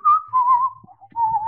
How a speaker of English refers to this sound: your whistle was very much like a good whistle, like you could whistle along to a tune.